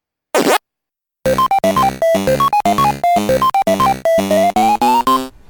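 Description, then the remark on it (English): A short whooshing burst, then a fast jumble of electronic arcade game bleeps and bloops that hop up and down in pitch. The run ends with a rising sweep of tones. “Ah, the arcade. The lights, the sounds.”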